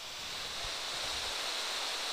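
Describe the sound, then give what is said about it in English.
A steady, continuous hiss of untuned analog television static, bright and unbroken for the whole stretch, with no voices or other sounds over it. “so you don't get that kind of that untuned television sound to help you drift off to sleep, do you?”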